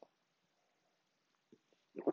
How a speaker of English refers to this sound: Coffee sip.